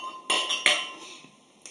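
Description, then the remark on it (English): Glasses clink together in a toast, two bright ringing chimes in quick succession followed by a fainter third tap, with a lingering metallic shimmer and no talking. “Well, cheers, boys. Cheers.”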